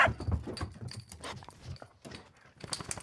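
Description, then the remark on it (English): A small dog, found lost on the street, barks in a quick, uneven run of sharp yaps, fairly loud, with no one talking over it. “We found this little doggy on the street.”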